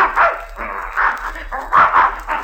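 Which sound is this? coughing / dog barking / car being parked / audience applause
dog barking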